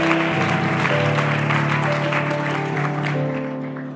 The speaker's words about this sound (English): Give the Lord a hand clap of praise while you're seated.